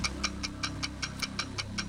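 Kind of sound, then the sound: signal or alarm, quiz countdown clock ticking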